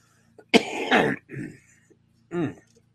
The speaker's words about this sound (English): And, folks, if you're wondering about me coughing, I tried a, what do you call those things? Aerosol squirty thing. See if it would help my breathing. It didn't help my breathing at all. And it's made me start coughing again.